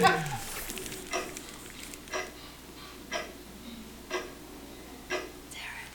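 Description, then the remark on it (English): A battery-powered clock ticks steadily, one crisp tick roughly every second, five or six in a row, moderately quiet over a low background hum. “Plus the clock is right next to the clock. I know, I always take the batteries out.”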